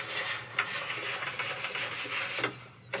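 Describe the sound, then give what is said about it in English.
A manual car window being cranked down: a continuous rasping, squeaky rub with a few sharp clicks as the handle turns, steady and fairly quiet, with no voices. “This is a manual card, like rolling down your window manually.”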